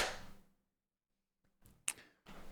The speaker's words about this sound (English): then we'll clap sync in 3, 2, 1.